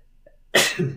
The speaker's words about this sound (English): Oh, sorry. Yeah, I just had to sneeze for a second.